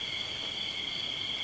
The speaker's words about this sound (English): listen, and you hear in different parts of the valley, there's different rhythms. And the rhythms move towards each other, move away from each other, change. If that's possible, listening to the crickets, what else is possible?